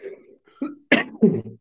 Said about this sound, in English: I can't stop coughing, boys.